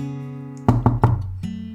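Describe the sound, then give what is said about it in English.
Three quick, solid knocks on the door of a crew bunk room aboard the ship Hound's Tooth, fairly loud, over a steady low hum, followed by a short shift in the background tone. “She's been spending a little bit more time than she usually likes to in the bridge of the Hound's Tooth, and finally she's feeling up to going down into the bunks and knocking on the door of the newest crewmate”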